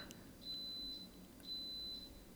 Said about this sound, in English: Our Instant Pot went off. Oh, there it goes.